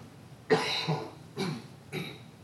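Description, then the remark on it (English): A preacher standing behind a pulpit coughs and clears his throat: one long, rough, raspy burst followed by two shorter coughs in quick succession, with no talking. “I can go all afternoon without coughing. Come on. Stand behind this pulpit. Here it comes.”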